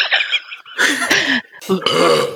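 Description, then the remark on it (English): A couple of loud, drawn-out burps, one right after the other, each raspy and throaty with a brief pause between them. “Either that or he's going to burp again.”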